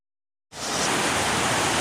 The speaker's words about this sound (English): Water rushes through the dam at Ningde Reservoir after two spillway gates were opened to discharge water. Typhoon Kanun brought heavy rainfall, which filled Miaoli's Ningde Reservoir to 99% capacity.